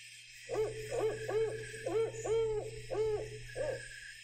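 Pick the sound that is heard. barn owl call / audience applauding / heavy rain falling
barn owl call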